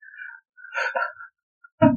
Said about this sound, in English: Sorry, those are my dogs barking. You can hear it, by the way.